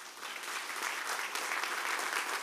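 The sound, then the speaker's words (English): A crowd applauds steadily, a dense wash of many hands clapping at an even, sustained level throughout, with no voices standing out, giving a round of applause to every speaker and everyone who delivered a video message at a Cade Chapel program. “But I would like to ask everybody to please join me in giving every speaker and every individual that delivered a video message a round of applause.”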